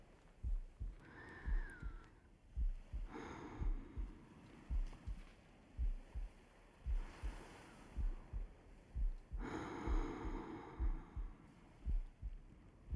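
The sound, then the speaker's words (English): Ocean waves surge and break on the shore in a few broad, hissing swells, rising and fading over several seconds, while a steady low thumping pulse beats underneath throughout. No one speaks. “can hear the waves at night from the bedroom.”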